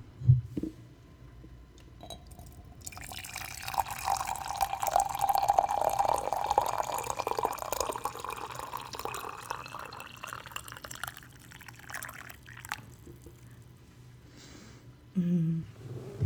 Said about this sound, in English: So I have my, you can't see it, but I have my mug that has like a little reindeer on the head. Well, the mug is shaped like a reindeer's head, which is kind of funny, but. So I'll be using that. Pour in the water.